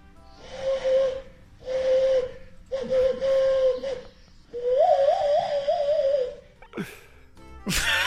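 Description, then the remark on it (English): An owl call blown through cupped hands: four breathy, hollow hoots on a steady low pitch, the last one longer and wavering, followed by a couple of short airy puffs. “Owl call with no instruments other than cupped hands.”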